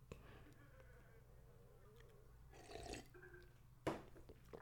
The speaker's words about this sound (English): Quick sip of water. Water break, boss. Don't mind me, boss.